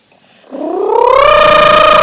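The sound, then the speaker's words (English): A voice imitates buzzing cicadas with a loud, raspy drone that starts low, climbs steadily in pitch, then holds a sustained, harsh whine to the end. “And to make it worse, every few minutes the cicadas would...”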